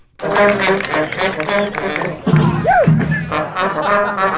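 A band plays on the steps of the State Capitol building in Madison on a Saturday morning for a crowd gathered in support of CUNA Mutual Group workers; brass and horns blare in a dense, loud wall of sustained tones, with one bright note swooping up and back down midway through, amid crowd noise.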